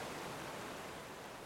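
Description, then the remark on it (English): A steady, even rush of ocean surf washing onto a beach, a continuous hiss-like roar with no distinct individual crash and no voices. “Just like the waves crashing, this happens naturally.”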